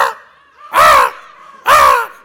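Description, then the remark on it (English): A voice imitates a huge shrieking bird with two loud, harsh, raspy cries, evenly spaced about a second apart, with a faint hum in the gaps. “And they're shrieking.”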